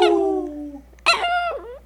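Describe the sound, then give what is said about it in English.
A dog named Callie howls on cue to the words 'Best dog, better dog' in two bursts: a drawn-out, falling howl that fades, then a louder, higher howl that holds its pitch and wavers at the end. “We're going to pick up the dog. Best dog, better dog. Ow!”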